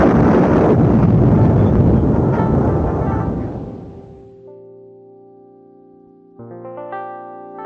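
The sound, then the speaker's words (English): A loud burst of crackling, fizzing noise that fades over a few seconds, followed by a short run of bright electronic tones: the 'firecracker' screen-clearing effect in a computer paint program. “And there are some real fun effects you can have clearing your screen. This one's firecracker.”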